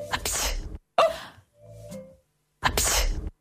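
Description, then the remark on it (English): A person imitates the sneeze of the country Georgia with a sharp, breathy sneeze, a quick second burst and a drawn-out voiced wind-up, then another loud, hissy sneeze, all fairly loud. “So for that reason and that reason alone, here are the sneezes of the world.”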